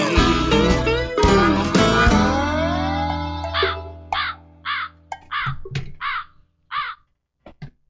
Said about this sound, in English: No, is that you being the crow? Is that you?